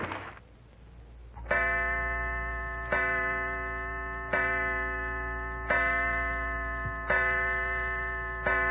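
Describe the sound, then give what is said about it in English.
A clock ticks and strikes six o'clock, chiming six times in a slow, steady rhythm, each ringing bell-like stroke lingering into the next, over a faint low background hum. No one speaks. “Six o'clock, Mother's late.”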